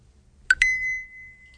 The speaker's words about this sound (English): So you'll hear the thing, and then you'll get to start. So are you ready? Yes. Okay. Getting ready right here. Maybe 5 seconds. Starting now. You hear the timer?